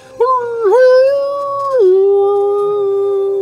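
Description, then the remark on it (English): Human voices imitate wolves howling together: one loud, sustained howl that starts abruptly, dips and rises in pitch, then settles into a long, steady, slightly lower tone. No speech accompanies it. “And roars out to the air, and the other wolves all together begin to howl in unison loudly into the sky.”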